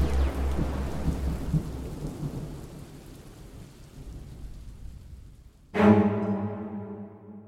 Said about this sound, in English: And why is it suddenly raining so hard? Dear God, the rain all over the city is black.